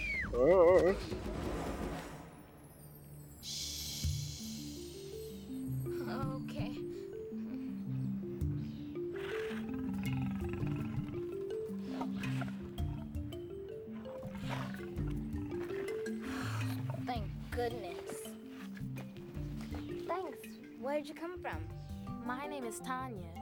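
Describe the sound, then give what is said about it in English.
A sick lion growls, snarls and roars in loud, rasping bursts throughout, over a steady rhythmic low musical backing. “Watching this particular lion for a few days now, trying to make sure he didn't harm anyone.”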